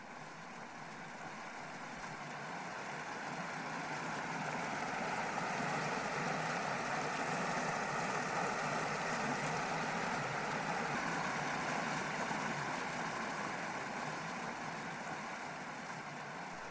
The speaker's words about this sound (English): So I'll bid you a very, very good night. And I'll let you listen once more to the sound of water in a lock in the depth of a winter's night.